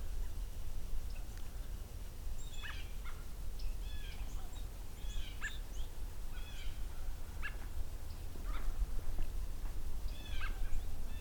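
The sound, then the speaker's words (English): American robins call back and forth outdoors, a steady scatter of short, bright chirps and whistled notes over a constant low rumble of wind or background noise. “So while a little quiet here right now, I've got some American robins talking to each other.”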